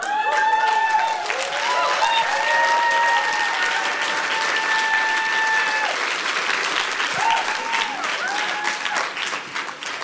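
An audience applauding steadily for about ten seconds for a group of new speakers, a dense, loud wash of clapping with high whoops and cheers rising over it throughout.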